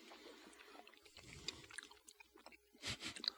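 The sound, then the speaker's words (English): Wet chewing of a dense, thick food that sticks to the teeth, with half of it stuffed into the mouth at once, soft squelching and smacking sounds in an irregular rhythm, no talking. “It's hard to fucking chew this guy.”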